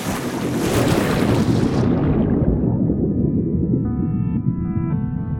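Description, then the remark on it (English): Loud rushing surface water and wind cut to a muffled, low underwater rumble as a diver in a wetsuit, after three deep breaths, plunges beneath the sea into dark, icy water, with faint tonal hums lingering in the murky ambience. “but instead, I take 3 deep breaths and I dive.”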